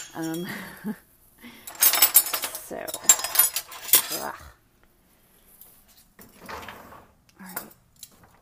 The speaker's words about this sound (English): Silverware.